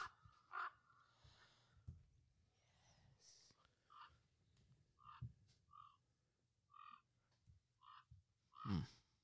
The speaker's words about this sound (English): Oh my god, the night is so quiet. All I can hear is the birds. I think this was... Either way, you can hear a mass of ravens.